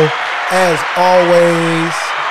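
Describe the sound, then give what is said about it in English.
An applause sound effect played from a soundboard button: a burst of crowd applause with sustained cheering voices rising over a steady wash of clapping, fairly loud, lasting a couple of seconds. “Where's the applause button? There we go.”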